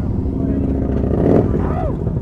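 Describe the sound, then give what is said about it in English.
Motorcycle engines rumble loudly, revving higher with a rising whine as the bikes take off across a parking lot toward their starting positions, a dense continuous roar throughout. “The engines rev, and the bikes take off across the parking lot towards their starting positions.”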